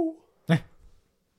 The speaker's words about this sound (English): What was that? What the fuck was that? That was like a dog noise. It's a little noise.